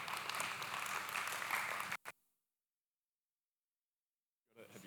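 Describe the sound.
An audience claps together for a volunteer called up to the front, a dense burst of applause lasting about two seconds, then cuts off sharply into silence before a voice starts up near the end.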